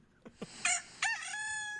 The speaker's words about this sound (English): is the rooster crowing twice.